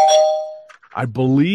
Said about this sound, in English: And not a real spoiler alert, but I'll ring the bell. not a real spoiler, but I'll ring the bell because it is a mild spoiler alert, that is.